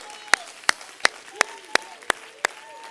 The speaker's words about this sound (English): Everybody stand. Oh, clap your hands, all ye people, and shout unto God with a voice of triumph.